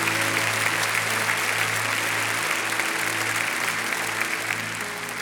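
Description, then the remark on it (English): An audience bursts into a steady round of applause, dense clapping holding at a loud level for several seconds with a low hum underneath, tapering slightly at the end. “Wow, give him a round of applause.”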